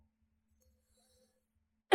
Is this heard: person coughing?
yes